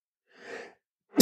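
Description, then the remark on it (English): A soft inhaled buildup followed by a sharp, loud sneeze burst near the end, with no talking. “God bless you.”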